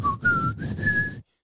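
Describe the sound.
A person whistles a quick phrase of four clear notes, pitch stepping slightly upward, fairly loud over a low background rumble, then cutting off abruptly.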